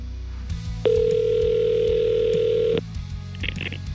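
A loud, steady telephone dial tone holds for about two seconds over a low background hum, then cuts off, followed by a few faint, brief electronic tones, as a call is placed to someone at the front.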